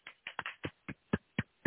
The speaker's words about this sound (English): Can y'all hear me clapping? I got my trucker headset on. Can y'all hear me? All right. I got my trucker headset on, but I'm clapping.